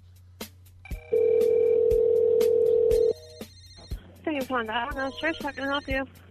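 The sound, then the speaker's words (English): A telephone call is placed to Domino's: a couple of short clicks or tones, then a steady two-second tone like a ring, followed by a voice answering on the line. “We're calling Domino's.”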